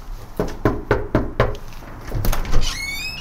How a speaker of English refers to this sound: You didn't see my doorbell. Do you not like the knocking? No, I normally won't answer.